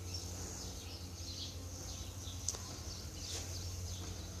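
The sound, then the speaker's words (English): Faint birds chirp sporadically outdoors on a cloudy day over a steady high insect-like drone and low background hum, with one brief sharp chirp standing out midway; no one speaks. “Look, all the birds enjoying the nature, but they don't disturb each other.”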